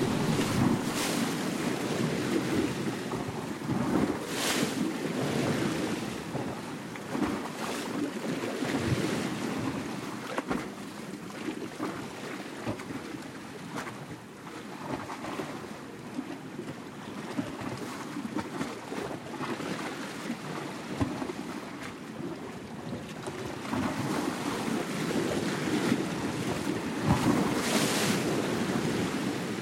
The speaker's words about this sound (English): We leave you this week on the shores of the Adriatic Sea. Eric Lacasa composed this piece from recordings he made of waves hitting the shoreline and swirling in rocks along the coast near Rovinj, Croatia.